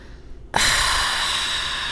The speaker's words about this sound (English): I mean, maybe because I'm having trouble breathing. Sure. Because I have asthma. Oh, that's what it is. I need my inhaler or something.